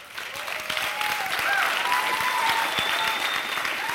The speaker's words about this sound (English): You're clapping for the wrong thing. That clap should really be for all of the women who continue to put up with the men in this room every day.